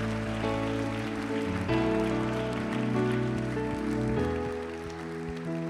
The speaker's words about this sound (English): If you believe God will save somebody, would you give the Lord a big old hand clap right now for those that may ask?